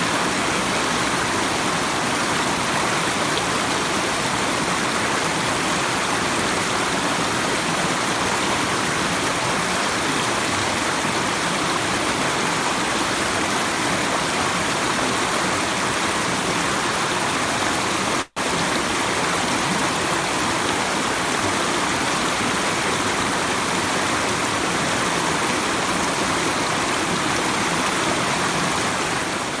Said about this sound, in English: One of my other favorite flows is a river. Let me show you a river. Check out this flow.